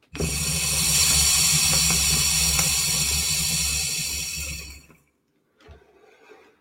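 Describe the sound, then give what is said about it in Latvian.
A drag on an electronic water pipe makes a steady, dense bubbling gurgle of water that runs loud for about five seconds, then stops abruptly, followed by a faint exhale-like breath and soft rustling. “Nu, ja kārtīgi velk. Vajag labu plaušu, lai šito izbaudīt, ja”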